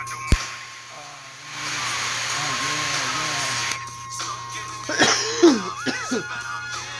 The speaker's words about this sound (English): Cough with your uncle, man, so let it out. Let it all out.